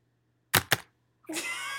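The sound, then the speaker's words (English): Two sharp, loud keyboard clacks in quick succession, then a brief pause before a sustained high, tonal wavering cry that rises and holds to the end. No one speaks. “The typing.”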